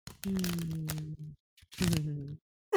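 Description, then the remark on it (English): A deck of erotic oracle cards being shuffled in two quick riffling bursts, each about a second long, with a crisp, fluttering crackle and a steady low tone running underneath. “So I'm going to give you some ASMR shuffling.”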